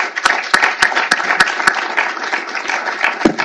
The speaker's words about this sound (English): I'm going to ask you just to sit for a couple more minutes while I introduce our next speaker, but a round of applause for this great team.